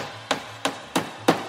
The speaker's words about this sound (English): Okay, gotta hammer this over here.